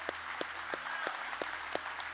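An audience applauds together for the men standing before it, a dense wash of many hands clapping with a few sharper, evenly spaced claps standing out in a steady rhythm throughout.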